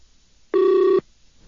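A single half-second ringback tone from an outgoing phone call placed to bring a caller onto a radio broadcast, a steady electronic hum that sounds once and clearly, with no talking around it.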